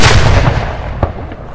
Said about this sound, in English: commence a minute silence with your cannon.